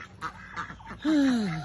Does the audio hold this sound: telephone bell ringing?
no